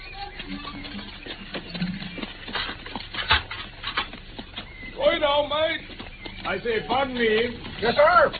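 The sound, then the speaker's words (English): A horse-drawn carriage draws near in a driveway, hooves clip-clopping in a loose, steady rhythm with rattling wheels, while voices talk over the latter half. “I can see the carriage in the driveway now.”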